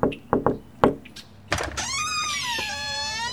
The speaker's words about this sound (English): She runs up to the front door, envelope in hand, and knocks.